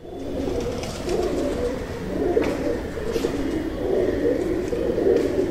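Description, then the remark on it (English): Rock pigeons coo in soft, rolling low murmurs, several overlapping calls continuing steadily, with no talking. “These guys court each other with gentle coos, and to signal distress, they use a harsh grunt.”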